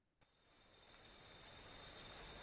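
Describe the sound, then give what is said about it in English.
A steady, high-pitched chorus of crickets chirping starts abruptly and fills the scene, growing slightly louder, with no voices present. “Those are crickets.”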